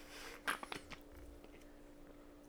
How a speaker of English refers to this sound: Gotta take a sip of some DP.